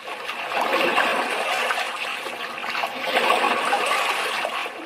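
Ocean water sloshes and laps steadily around a small lifeboat in the dark Atlantic Ocean, rising in two gentle swells over a few seconds with a continuous rushing, splashing texture and no voices.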